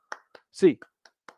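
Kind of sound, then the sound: human body sound, rhythmic hand claps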